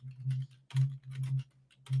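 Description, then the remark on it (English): Rapid clicking and clacking of keys being typed on a computer keyboard, in uneven bursts with short pauses, over a steady low hum. “Y'all hear me clicking and clacking on my keyboard?”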